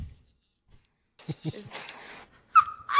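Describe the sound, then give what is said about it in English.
A female dog growls and scuffles while fighting, in a short noisy burst of rough, rumbling sounds and movement, followed by two high, sharp whines or yelps. “Sorry, my dog's fighting.”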